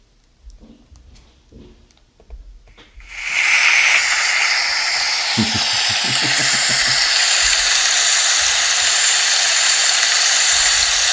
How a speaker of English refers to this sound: That's kind of what it is anyway. I was like, put it in the rain. What is it? Well, it's just raining anyway. Oh, I thought it was like applause at the Canadian Country Music Awards or something before a live performance.